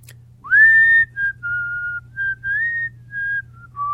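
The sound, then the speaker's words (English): A person whistles a short melody, a string of clear sustained notes that slide and shift in pitch, with a low steady hum underneath and no talking. “Do you whistle? Yeah, I do.”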